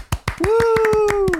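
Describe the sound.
A brief round of applause: a dozen or so sharp, uneven hand claps, loud, with a long sustained voiced cheer that holds a steady pitch and sags slightly at the end.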